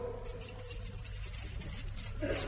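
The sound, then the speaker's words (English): Keys jingle and clink softly a few times as they are hung on a hook, light metallic rattles over a steady low background hum. “I'm just hanging my keys on the hook.”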